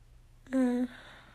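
A single short, voiced yawn, loud and steady-pitched for about half a second before cutting off into quiet background noise.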